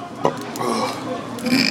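A drawn-out burp after eating cookies and cream, rumbling for over a second, low and gurgly, with a brief click at the start and no talking over it.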